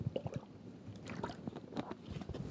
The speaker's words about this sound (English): Give me 1 second, let me drink some water.